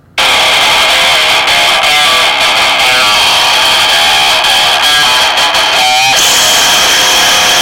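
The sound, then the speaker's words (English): A new band's music blares from a cell phone speaker held up to a microphone, harsh, tinny and heavily distorted, with no low end. It plays as a continuous loud wash of noisy tones from start to finish. “This is my new band. I'll just play it right through the microphone so you can hear how awesome it is.”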